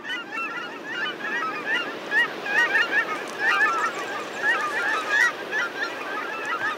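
A large flock of migrating waterfowl honks and calls continuously, many overlapping goose-like voices forming a dense, chattering chorus with no talking.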